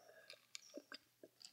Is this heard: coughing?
no